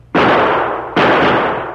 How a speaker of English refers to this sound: I wonder if we can't make him hear us. You fire a shot, maybe. I will.